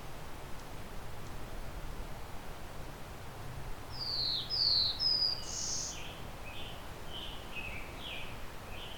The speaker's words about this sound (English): Scarlet tanager directly behind me.